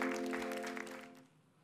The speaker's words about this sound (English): Yes, yes, you can applaud.